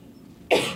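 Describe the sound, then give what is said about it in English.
A single sharp cough bursts out after a brief quiet moment, fairly loud, with a rough, breathy texture that trails off quickly. “Sorry, I had to cough.”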